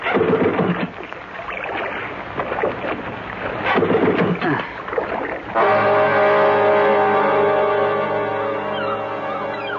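A small boat motor coughs and sputters through several uneven starting attempts, then catches and settles into a steady, loud, droning hum that runs on to the end.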